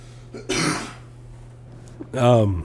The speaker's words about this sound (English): Man, my cough is just not good.